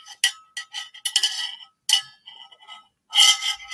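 A coffee mug clinks and taps several times in an irregular run of bright, ringing knocks, with quiet handling sounds between them as someone takes a sip. No one speaks.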